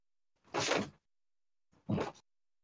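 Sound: door being closed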